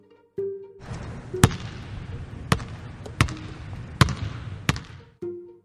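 A basketball bounces five times at uneven intervals in a school gym hall during a PE class, each smack sharp and ringing over a steady, echoey background wash of noise.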